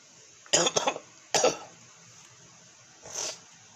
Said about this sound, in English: Last few days, I really ain't slept worth shit, cause motherfucker just out coughing my sleep and wake up, you know, and it's bad cough.